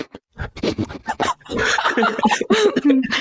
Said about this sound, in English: Sorry, my dog's at my bedroom door and she wants in.